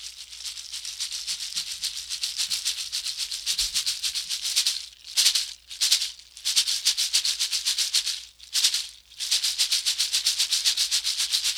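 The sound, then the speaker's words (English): Deer dancer's ankle rattles, made of butterfly cocoons put together and worn on the ankles to sound when he dances, shaken in a fast, steady rhythm, making a dense, dry, hissing rattle that swells and briefly breaks a few times midway, with no voices. “They are butterfly cocoons put together, and the deer dancer put them in their ankles to make sound when he dances, and it sounds like this.”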